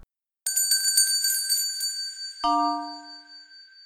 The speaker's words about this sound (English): this is called … by a musician called …. Get the tissues.